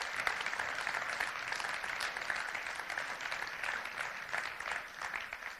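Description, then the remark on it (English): A crowd gives a clap offering and shout of praise to God, clapping steadily and densely for several seconds, a continuous wash of many hands with occasional shouts mixed in, holding a fairly even loudness throughout. “Come on, let's give him a shout of praise. Let's give him a clap offering.”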